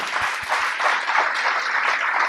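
A crowd breaks into steady, dense applause for a guest musician, many hands clapping together in a loud, continuous wash of sound with a few low thumps at the start and no talking.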